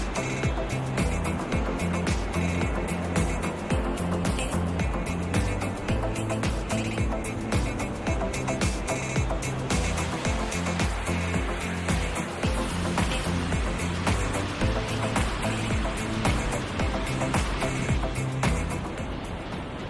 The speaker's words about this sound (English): Just listen to that water roar.